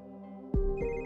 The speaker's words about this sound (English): But before Alexis closed her eyes, her phone rang.